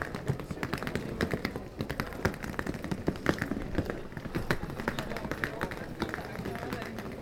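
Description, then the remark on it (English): A woman rolls a suitcase over cobblestones in Rome, a steady, rapid clatter of small bumps and rattles that keeps going for several seconds, with a murmur of voices in the background. “Oh, I hear a suitcase being rolled over cobblestones.”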